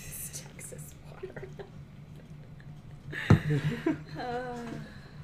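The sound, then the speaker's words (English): A man sips and swallows a drink that is not water, called Texas water: a sharp gulp followed by a couple of wet mouth sounds, then a short voiced exhale, over a low steady hum. “drinking his not water.”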